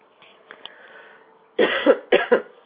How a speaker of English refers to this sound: I do apologize for coughing.